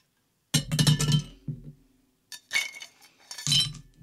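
Ice cubes clatter and clink against a glass in three bright bursts as a drink is poured over them, with short quiet gaps between and no one talking.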